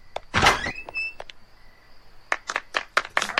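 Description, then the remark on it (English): A door is opened: a solid thunk and a short creaky squeak, then a quick run of clattering clicks and knocks. No one speaks. “You'll just open that door, you'll see the next mayor of Springfield.”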